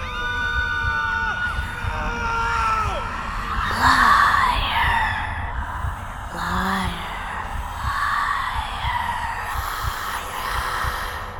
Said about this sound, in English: The people that were murdered in this room, their agony is so loud. What little information I could get sounded like a shout from far away under all those screams.